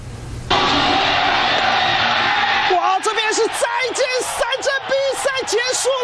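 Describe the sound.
A baseball crowd in Taiwan bursts into a loud, sustained roar as the CTBC Brothers clinch the Chinese Professional Baseball League championship against the Uni-President 7-Eleven Lions on Sunday, and then excited commentators shout and yell over the cheering with rising, animated voices.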